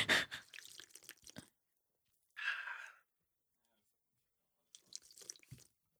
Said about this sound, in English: So, yeah, this podcast is brought to you by Truly, so I'll take a sip here. Not sponsored, but trying to be.